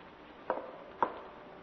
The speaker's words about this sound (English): What's that? Coming from the attic. Footsteps of a lame man. Listen.